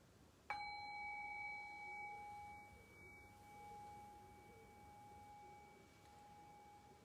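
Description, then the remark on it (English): A single meditation bell is struck once to begin a two- or three-minute meditation, ringing out with a clear, pure tone that lingers and slowly fades over several seconds. “And I'll ring the bell to make it official.”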